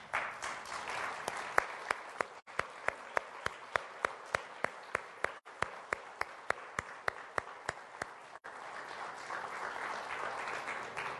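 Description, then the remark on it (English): A crowd applauds steadily for about eleven seconds, a dense wash of many hands with one sharper, louder clapper cutting through in a regular beat. Nobody speaks over it. The applause honors people standing who have served in the military or have children who served. “So I'd like, if you have served in the military, or you have children serving or who have served, would you please stand so that we can applaud your citizenship?”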